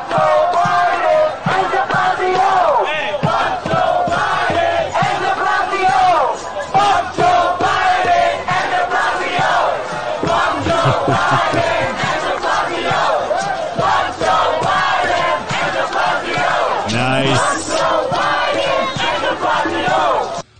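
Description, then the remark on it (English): A large crowd chants and shouts together at an anti-Joe Biden street parade in New York, a loud, steady roar of many voices with rhythmic, repeated bursts that continues without a break for about twenty seconds. “And of course, guys, it wouldn't be a show without a fuck Biden parade. Also, again, coming out of New York, and they slip in another douchebag, also the mayor of New York.”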